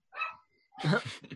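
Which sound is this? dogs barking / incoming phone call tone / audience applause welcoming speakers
dogs barking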